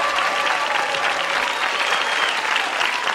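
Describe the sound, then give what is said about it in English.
A recorded applause sound effect: steady applause from a crowd, a dense, even wash of clapping that stays loud and unbroken for about three seconds, with no voices standing out. “You brought your own applause sound effects.”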